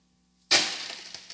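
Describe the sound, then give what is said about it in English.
Coins, not gold or silver, poured out of the Moss coin jug, starting as a sudden loud clatter and tumbling into a brief run of metallic jingling and clinking that fades over about a second. “Now, I just want to clarify, this is from the Moss coin jug right now, and these are not gold, silver coins.”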